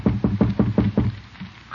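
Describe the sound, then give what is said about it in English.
Six firm knocks on a door as Little Leroy knocks on his uncle's door at the Great Gildersleeve's house, in a quick, steady rhythm, fairly loud, followed by a brief pause before a voice begins right at the end. “Little Leroy is just knocking on his uncle's door, and by the tone of his voice, he's trying to get out of something.”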